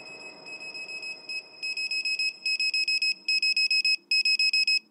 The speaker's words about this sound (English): I actually was woken up out of my bed with my pager.